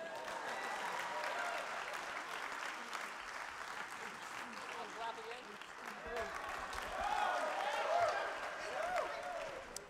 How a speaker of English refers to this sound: Hold on, just clap while I open this water, cool?